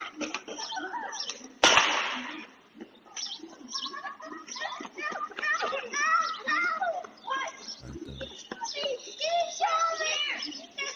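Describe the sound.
Children play outdoors on Candlewood Lane on a Saturday afternoon, their high-pitched voices chattering and calling out throughout, with a single sharp, loud gunshot early on and faint birdsong in the background.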